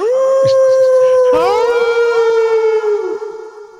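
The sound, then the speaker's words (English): A long, sustained wolf howl sound effect rings out loud and clear, joined partway through by several more overlapping howls that waver together before slowly fading away. “Do we have, like, a woo soundbite for your wolf laws?”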